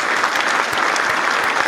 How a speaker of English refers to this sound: Now I'm gonna give this a round of applause, because that's dope. Right?